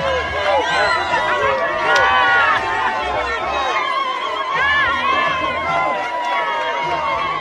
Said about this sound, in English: Malema arrived to a hero's welcome with thousands of party supporters cheering and ululating when his motorcade made its way into the stadium.